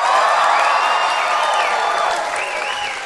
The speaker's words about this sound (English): Ladies and gentlemen, give us a big round of applause if you've ever heard our show Do Go On before.